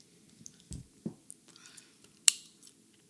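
Quiet chewing of gum with a few soft wet clicks, then one sharp, crisp pop standing out clearly before the chewing carries on faintly.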